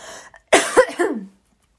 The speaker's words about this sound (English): I need to cough, so bear with me.